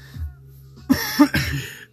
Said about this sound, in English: And right now I'm a little sick. Excuse the coughing.